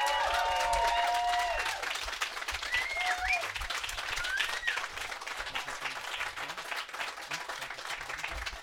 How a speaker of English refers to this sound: I'd like the entire thousands of people in the tent right now to give them a great big round of applause for sitting up here and taking those questions.